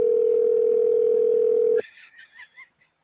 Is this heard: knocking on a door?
no